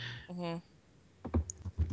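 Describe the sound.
A brief hum of a voice, then a quick, uneven run of keyboard clicks, like someone typing a few keystrokes on a computer keyboard.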